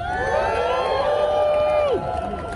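A crowd cheers and applauds loudly and steadily as a speaker, a parent and educator, is brought up. Many voices shout and whoop over one another, with one long whoop sliding down in pitch just before the noise eases slightly.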